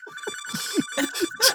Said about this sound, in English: That is an old phone. Yep, it's a landline.